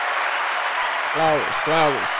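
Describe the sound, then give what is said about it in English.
Steady clapping fills the whole moment, a dense crackling patter, while a voice calls out twice over it in short, drawn-out cheers. “Let's clap it up. Let's clap it one more time.”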